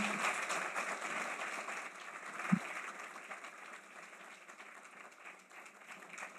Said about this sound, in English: So please, a round of applause for our speakers as they make their way up to the stage.